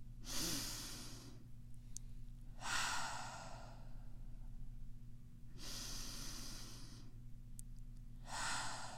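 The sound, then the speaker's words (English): Slow, deep breaths drawn in and pushed out, four long airy rushes in an unhurried rhythm, with a low steady hum underneath and no talking. “Deep breathing gives you energy, calms your mind, and focuses you.”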